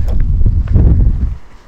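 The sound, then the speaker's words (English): Strong wind buffets the microphone outdoors at a house where the speaker used to live, in a loud, low, rumbling roar with gusty surges, easing slightly toward the end. No one speaks. “It's very windy here.”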